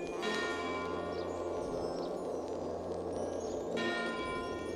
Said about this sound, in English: That's awesome. I always love bells, too.